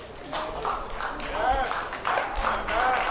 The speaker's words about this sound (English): Oh, that's okay. The slow hand clap.